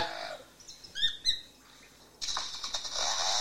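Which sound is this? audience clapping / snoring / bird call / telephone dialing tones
bird call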